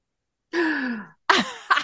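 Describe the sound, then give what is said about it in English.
A voiced gasp drawn out for about half a second with a falling pitch, followed after a short pause by two quick, breathy vocal bursts. “It's the gasp.”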